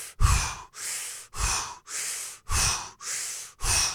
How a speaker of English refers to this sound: And you do the same breathing technique before and after? Yeah. Well, I'll do, usually after I'm doing some intense yoga, like I'll sit and I'll just...